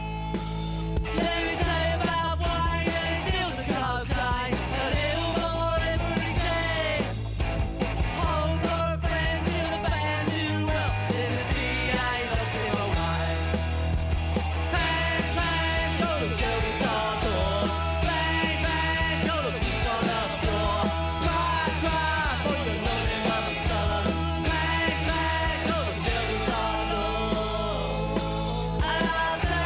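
A loud, driving punk rock song plays throughout, with pounding drums, dense distorted guitars and raw, shouted-sounding vocals at a fast, steady tempo.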